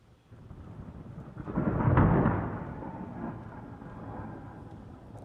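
A long low rolling thunder swells over a couple of seconds, peaks, then slowly rolls away into a steady grumble, with a faint hiss of rain underneath and no voices.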